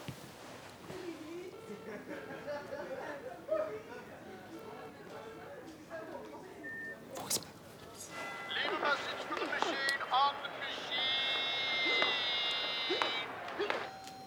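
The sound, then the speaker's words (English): Voices talk at first, then a phone call is placed and a telephone ringing tone sets in partway through, a steady, high electronic warble that keeps sounding fairly loud until the end. “It's ringing.”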